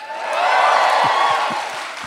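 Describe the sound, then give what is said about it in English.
A live audience at the Wilshire Ebel Theater in Los Angeles cheers and whoops loudly at the mention of the city, a dense wash of voices and clapping swelling over a couple of seconds, with a few low thumps underneath. “I love being cheered for knowing what city I'm in.”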